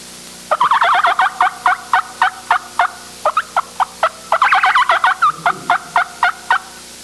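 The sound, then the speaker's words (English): A turkey cackle hunting call performed by a caller before a crowd at a calling event: a rapid, loud series of sharp, high clucking yelps in two bursts, quickening and tumbling together before trailing off into spaced clucks, with no talking over it. “My favorite hunting call would be the cackle in springtime.”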